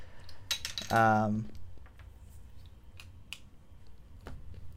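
Clattering and clinking of small hard objects being shuffled and moved around as someone rummages through items on a desk, with a brief squeaky tone early on, then scattered light taps and knocks.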